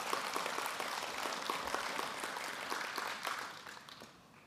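A crowd applauds steadily, dense overlapping claps filling the space at moderate volume, then tapering off toward the end.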